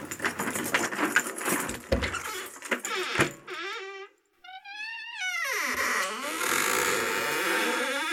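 A few seconds of bright, metallic jangling like a bunch of keys being shaken, followed by a run of wavering, sliding electronic tones and a noisy wash to finish.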